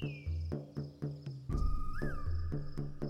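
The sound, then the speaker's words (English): Bees buzzing near a hive, a low droning hum that pulses in steady waves with thin high whines over it, fairly loud, swelling fuller halfway through, with no voices. “Stepping down each rung, sliding your hands down the smooth reeds is a joy compared to scaling the face of the crag, but the task ahead is still perilous, and the buzzing grows louder.”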